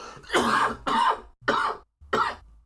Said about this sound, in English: I am so sorry. This cough has come out of nowhere. It's attacking me.